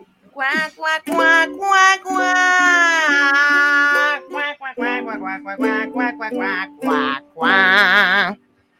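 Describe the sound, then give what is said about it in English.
A voice sings a song in a nasal, buzzy tone imitating a duck's quack, with long wavering held notes followed by a run of short, choppy quacking syllables, loud. “My canard à l'orange is very, very strange. Oh, is it strange for you? Quack, quack, quack, quack, quack, quack, quack, quack, quack, quack, quack, quack, quack, quack.”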